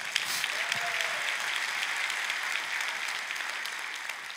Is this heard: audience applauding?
yes